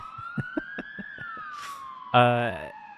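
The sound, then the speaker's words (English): An ambulance siren wails steadily, its tone slowly rising and then sliding down, while brief voices and a loud, harsh horn-like blast break in toward the end. “Guys, you know the ambulance is not allowed in my driveway.”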